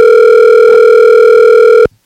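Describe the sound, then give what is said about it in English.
A loud, steady electronic ringback tone hums without a break for nearly two seconds while someone places a phone call, then cuts off abruptly. No voices. “Please pick up.”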